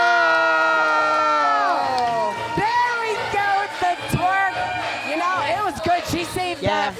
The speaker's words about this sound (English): Now she's getting the crowd on their feet. The hands are clapping and she's getting some interaction and love.